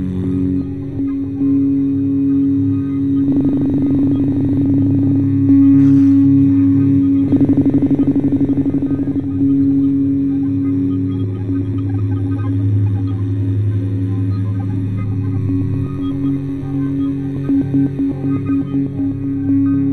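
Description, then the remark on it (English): Several voices hum together in a steady, low drone that holds for the full stretch, swelling slightly in a few places, with no words spoken. “Let's hum together for electricity.”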